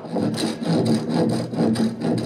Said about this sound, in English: They're planing the inside of each barrel with a special curved hand plane.